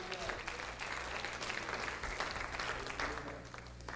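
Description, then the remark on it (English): A crowd at a church service claps steadily for several seconds as a hand clap of praise to the Lord, dense overlapping hand claps filling the room at a consistent, fairly loud level with a low hum underneath. “Why don't we give the Lord one more hand clap of praise?”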